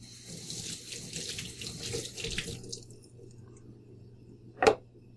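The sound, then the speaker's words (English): A faucet runs for about two and a half seconds over seeds being rinsed after their remaining seed coating is cleaned off, a steady splashing hiss of water that then cuts off, followed by quiet and one brief sharp clack near the end. “And then you run it under some water.”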